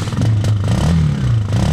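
A motorcycle is kick-started by pressing a button on the handlebars and kicking down hard on the lever; its engine roars and revs, a loud, throaty low rumble whose pitch swells up and dips back down over a couple of seconds, with some rattling clatter underneath.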